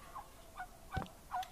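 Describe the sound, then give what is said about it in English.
A turkey gobbles in short, warbling bursts, about four quick calls spread across a second and a half, fairly faint against a quiet background with no talking. “You're a little rattled by the Turk. The turkey.”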